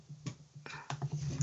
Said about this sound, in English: Oh, I bet. I can hear you type away in your keyboard.